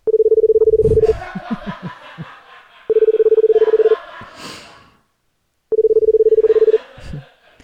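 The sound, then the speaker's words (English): Three loud, steady electronic beeps, each lasting about a second at a mid pitch, separated by pauses filled with snorting, snickering vocal noises, as a man wiggles his tongue to the beeps. “Yeah, so for those of you just listening, he wiggles his tongue to the beep sounds, and then he writes, look what I can do.”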